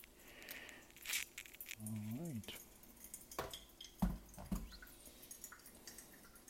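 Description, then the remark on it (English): Hot water is poured over a paper coffee filter in a clever dripper to rinse it, with a steady, splashy trickle, punctuated by a few sharp clinks of kitchenware and a brief rising whine partway through. “Okay, let's wash our pepper filter.”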